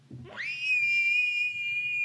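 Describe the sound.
A person imitates an elk bugle: a low grunting start that sweeps sharply upward into a long, loud, steady high-pitched whistle held for nearly two seconds, with no talking.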